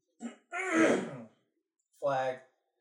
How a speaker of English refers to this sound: But, excuse me, I got to clear my throat.